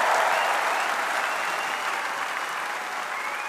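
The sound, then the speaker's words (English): Loud, sustained thunderous applause from a large crowd at the Labour conference in Brighton after Labour leader Mr. Corbyn got onto the podium, a dense wash of clapping that holds steady throughout with no voices standing out. “And there was thunderous applause that went on for a good 5 minutes after Mr.”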